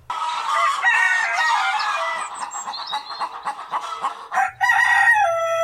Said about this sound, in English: It's a chicken. Yeah, that's what I'm talking about. And it's not just one. That's a cock. There it is. And another. He's got bloody chickens.